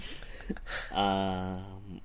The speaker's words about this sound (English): Yeah, cough it out. Cough it out, my friend. Goddamn espresso beans. Don't be smoking on the espresso beans, son.